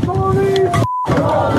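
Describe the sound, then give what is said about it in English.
A crowd of protesters marching through a city at night chants "I Can't Breathe" loudly together, voices blending into a dense, sustained roar, broken briefly by a short pause with a thin steady tone before the chanting resumes. “The march ultimately made its way peacefully through the city with chants of I Can't Breathe and The protesters trained most of their frustration on law enforcement that generally kept its distance from the crowd.”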